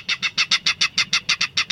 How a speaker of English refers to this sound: In a salt marsh near San Francisco, a loud clatter erupts from the dense vegetation. These jolting notes, like a small engine cranking up, are the voice of a Ridgway's rail.